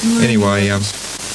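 A dense burst of static hiss fills the whole clip, loud and steady, with warbling tonal whines sliding over it in the first second before the crackle carries on alone.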